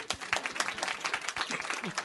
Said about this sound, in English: Would you want to see that tiny teddy? Yeah. Yeah. Round of applause.